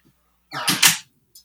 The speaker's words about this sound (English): Hang on. Let me shut my door real quick.